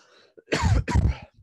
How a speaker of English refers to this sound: So my bad for coughing.